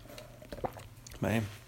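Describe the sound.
Quiet mouth sounds of someone sipping ice cold water from a Mercury's coffee cup: a few small wet slurps and swallows over a low steady hum, then a brief voiced exhale.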